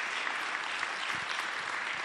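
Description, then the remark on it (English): Steady, dense applause from a church audience for a pastor fills the whole clip, many hands clapping at once in a continuous bright wash with no voices heard. “Please clap for this man of God.”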